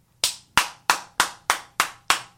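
Eight sharp, bright hand claps in a steady, even flamenco palmas rhythm, roughly three per second, each crisp and loud with a quick decay, with no voices.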